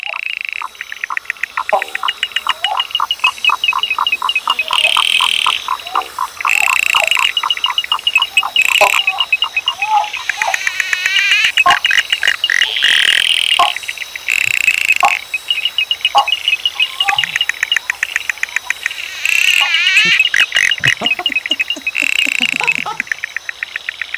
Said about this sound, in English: These are the frogs that are replacing … on the Australian charts.